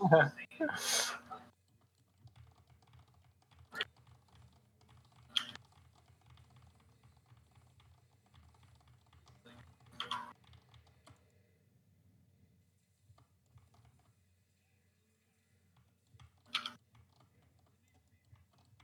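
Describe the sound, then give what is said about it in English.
Scattered computer keyboard key presses, a quick cluster of clicks at the start and then single taps every few seconds, fairly crisp over a low steady hum. “My keys are just so, I feel like I'm, the carpal tunnel setting in, you know?”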